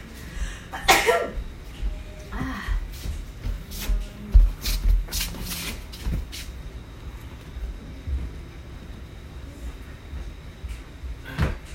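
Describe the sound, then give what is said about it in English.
A single sharp sneeze bursts out near the start, followed by quiet rustling, shuffling and a few soft knocks amid otherwise stillness. “Oh, I have a sneeze.”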